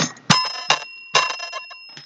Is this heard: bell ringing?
yes